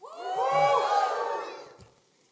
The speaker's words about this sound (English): when I said open to Luke 9, they all gave a big cheer. They just cheered about John 6. Or maybe you guys are just that excited about any chapter of the Bible.